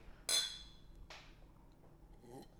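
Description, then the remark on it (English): Glasses of water clink in a toast: a bright, ringing clink of glasses touching, followed by a softer second tap about a second later and a faint third near the end, with no talking. “Let's cheers with our H2O.”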